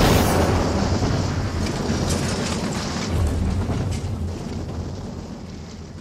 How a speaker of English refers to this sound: They really blew that car up.